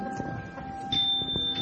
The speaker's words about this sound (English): Can you ring the lowest bell that Julie Bells owns? That's a C4.